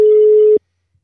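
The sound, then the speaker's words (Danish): A single steady telephone ringback tone from an outgoing phone call sounds clearly for about half a second, then cuts off into silence. No one speaks. “Jeg prøver simpelthen at ringe op.”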